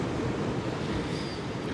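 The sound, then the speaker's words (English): A steady, full roar of surf washing along a beach, continuous and fairly loud for the whole moment, with some wind rushing across the microphone and no voices. “So I'm here at the beach and I am excited to be here.”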